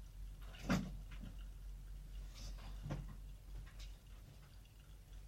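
Small objects knocked off by a pet clatter onto a hard floor in two distinct knocks a couple of seconds apart, fairly quiet against a low steady room hum, with no voices.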